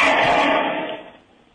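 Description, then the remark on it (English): A car screeches past, a loud, harsh, shrill rush of tire and engine noise that starts at full strength and fades steadily away over about a second and a half. “I heard a car screech by.”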